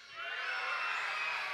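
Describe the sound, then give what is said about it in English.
A group of children shout excitedly together about Christmas when asked if they are excited, a loud, high-pitched, sustained burst of overlapping cheering and whooping that rises quickly and holds steady for over a second. “So I'm going to ask you, if you're excited about Christmas, when I do, and I'm done, you make whatever noise you feel like making at that moment to express your excitement.”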